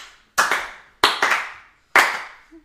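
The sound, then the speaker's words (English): A few sharp hand claps in a slow clap, spaced slowly apart, with a quick double clap in the middle, each one ringing briefly before fading. “I'm sorry, but that deserved a slow clap.”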